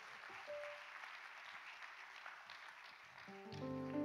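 A crowd claps in sustained, dense applause that fills the room evenly, joined near the end by a swelling organ or keyboard chord rising underneath.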